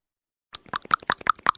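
After a brief silence, a caller on a phone line taps on his telephone: a rapid, slightly uneven run of about ten sharp clicking taps with a hollow, plopping tone, fairly loud, with no voices.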